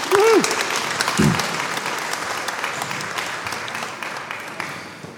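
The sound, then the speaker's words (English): A crowd of people breaks into steady applause for a group of children returning to their seats, a dense patter of many hands clapping that gradually softens, with a brief voice heard at the start. “So let's give them a round of applause, please.”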